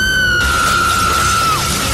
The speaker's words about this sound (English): All the glass in the house busted. Windows, mirrors, wine glasses, everything.